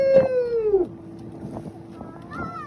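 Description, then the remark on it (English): A fishing boat's motor drones steadily over rushing water and wind noise at Tanjinan Beach, with a short, high, sliding vocal cry at the start before the engine hum carries on alone. “It was a big double digit event, so we took a fishing boat out.”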